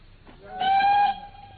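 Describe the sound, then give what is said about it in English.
A train whistle gives one short, clear blast of about half a second over a low, steady rumble at a suburban railway halt on the line to London, with no voices present. “We get halfway to London, and you suddenly insist on dragging me off the train at this suburban halt and not a refreshment room in sight.”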